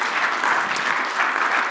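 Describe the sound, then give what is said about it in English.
An audience applauds for the moms and homemakers, a steady, dense, even patter of many hands clapping at a fairly loud, constant level throughout, with no voices standing out. “But yes, clap for the moms and the homemakers.”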